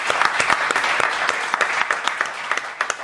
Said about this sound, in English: And a special warm round of applause to King Canners, Paul Canneville.